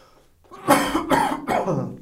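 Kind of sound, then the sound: human body sound, coughing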